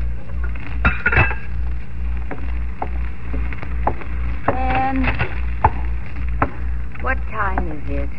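Metal pots and pans clatter and clink repeatedly in a kitchen in Chicago as a man gets his own breakfast. There are sharp irregular knocks and ringing scrapes over a low steady hum.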